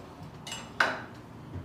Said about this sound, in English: So from there, I'm just gonna cut just a little bit of rind off of one of my limes.